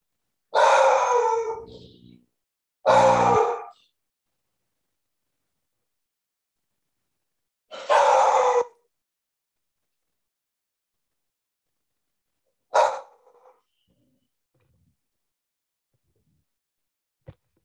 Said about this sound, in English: Give all four of his dogs a chance to bark at the door